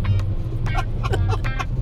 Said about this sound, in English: Nothing like a truck revving its engine right in the middle of your intro. And, hey, we're making a podcast here. And I can't even finish it because we're stuck in traffic and the truck is right next to us.